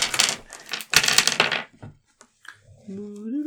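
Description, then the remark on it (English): Dice rattle and clatter across a hard surface in two quick bursts of sharp clicking, rolled for a trap check in a tabletop role-playing game, then fall quiet before a voice briefly starts speaking. “Oh, you better get the dice out.”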